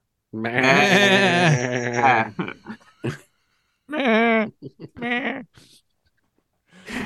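Goats bleat back and forth: one long, wavering bleat, then after a pause two shorter answering bleats, all loud and close with brief quiet gaps between them.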